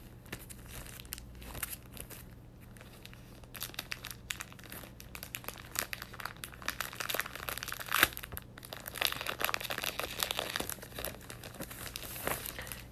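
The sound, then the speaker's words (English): Dry pages of old magazines crinkle and rustle, with irregular crisp bursts as the pages are handled and turned, growing busier and louder toward the end; no one speaks. “I like this old paper. How many pages did it used to be in there? Oh, this is crazy to look through these old pages.”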